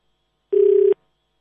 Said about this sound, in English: So let's see. We'll wait for her phone to ring.